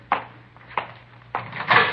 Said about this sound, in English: It's a little warm in here. You want to open the door for a minute? Yeah, sure.